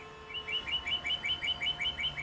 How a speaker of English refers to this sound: And notice the birds already found the house. Yeah. That was a cardinal.